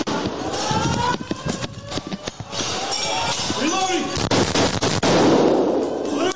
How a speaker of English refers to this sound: It's upstairs. It sounds like it's upstairs. Go. You can hear the gunshot.